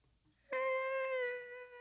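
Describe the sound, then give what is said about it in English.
A person imitates a whale call with a single long, high, steady wailing tone that starts abruptly and is held for over a second, fairly loud with no talking. “Let me hear your whale.”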